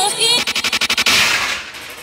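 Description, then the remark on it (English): A gunshot sound effect: a rapid burst of about eight sharp shots in quick succession, like automatic fire, followed by a loud hissing, decaying blast that trails off. Loud, with no talking. “Link code means rewind, a gunshot means forward.”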